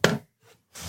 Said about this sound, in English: Most of the time it's y'all creaking and cracking. It's mostly me. All these chairs creaking and cracking.